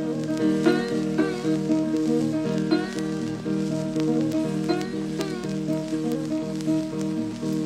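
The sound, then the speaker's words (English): An old, crackly recording of the folk song about John Henry: steady hiss and sizzling surface noise run beneath sustained musical tones and a wavering, sliding melody, holding an even loudness throughout. “There was a song about John Henry, which I will cut to now.”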